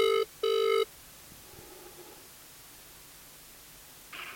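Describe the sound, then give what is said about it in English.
A phone's ringback tone on an outgoing call: two quick tonal buzzes in a double-ring pattern, fairly loud, then quiet line hiss and a faint burst of noise at the end. “I'm just calling people on my phone”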